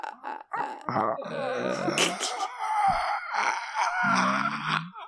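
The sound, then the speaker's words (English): A person imitates the croak of a demon-possessed nun, a long, guttural croak, rasping and groaning with strained, gravelly tones rising and falling for several seconds, fairly loud with no words. “The sister's head leans back and she lets out a croak.”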